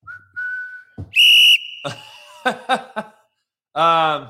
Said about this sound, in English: If I was too short, I'd blow the whistle. Blow the whistle.